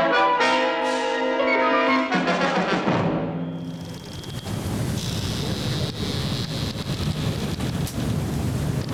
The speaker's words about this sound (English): You might wonder why you can hear the sound of the waves when the story that we're going to be talking about tonight takes place in outer space.